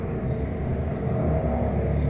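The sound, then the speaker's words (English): A car engine revs outside with a deep, loud, low-pitched rumble that holds steady for a couple of seconds, thick with throaty bass and no voices over it. “Somebody is revving their engine out.”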